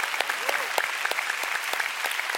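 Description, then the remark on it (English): On a cold, rainy day, an audience breaks into steady, sustained applause, giving the Lord a big hand, a dense patter of many hands clapping at an even level throughout, with a faint voice rising briefly beneath it. “Come on, you want to clap? Give the Lord a big hand.”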